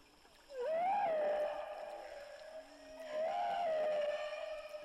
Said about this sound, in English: Now, another thing that researchers have learned about humpback whales is they make perhaps the most famous sound from the oceanic world. And that, of course, is the song of the humpback whale.